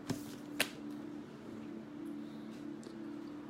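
A deck of cards being shuffled for a card reading: two sharp snaps of cards near the start, then soft, faint rustling over a steady low hum, with no one speaking.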